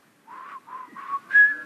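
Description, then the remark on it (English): A person whistles a short melody of four breathy notes from the 1915 Robert Harkness hymn 'Are We Downhearted?', rising in pitch on the final held note, moderately loud with no talking. “There we go, almost got a whistle out.”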